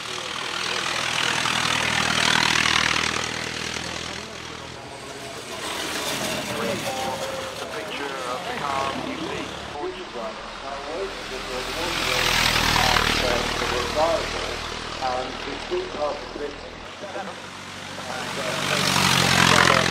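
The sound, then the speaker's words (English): The 9.2-liter four-cylinder engine of a 1903 Mercedes race car roars loudly and continuously as the car heads up a race course, its rough, throbbing note swelling and fading as it revs, surging strongest near the start, middle and end. “The next engine you hear running is going to be the sound of that 1903 Mercedes with its 9.2-liter four-cylinder heading up a race course.”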